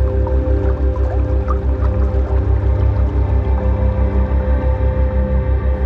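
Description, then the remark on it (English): Water drips and plinks sporadically over a dense, steady low rumble with a rhythmic pulsing throb. No one speaks. “And the third ring is the ring of water.”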